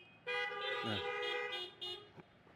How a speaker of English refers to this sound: If you can hear me, honk your horns.